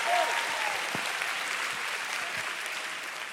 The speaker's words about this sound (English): I thought you'd be clapping faster and louder. Hey!